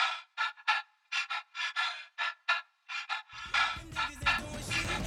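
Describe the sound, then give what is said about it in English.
Rhythmic, breathy panting and gasps mixed into a music track pulse in a steady pattern, starting alone while the beat drops out, then joined by a fuller music bed with low bass near the end. “the beat drops out entirely except for the rhythmic breathing and gasping sounds that have been mixed into the track the entire time.”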